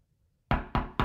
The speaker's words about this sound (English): The knocking at my door one morning startled me, and I jolted up out of bed.